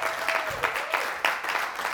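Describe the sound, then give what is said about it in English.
A church audience claps to give the Lord a hand on a morning service, a steady, dense wash of applause, moderately loud with a few sharper bursts of clapping rising through it. “Can we give the Lord another hand, amen, this morning?”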